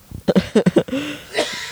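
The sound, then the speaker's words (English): A quick fit of about four harsh coughs in close succession, fairly loud, trailing off into a softer throaty breath with no talking. “And tell us about that moment while I cough.”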